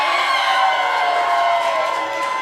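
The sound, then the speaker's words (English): A large crowd cheers and shouts loudly and steadily in answer to being asked who is in a bad mood tonight, a dense, sustained roar of many voices filling the whole moment with no break. “Sound of applause, who's in a bad mood tonight?”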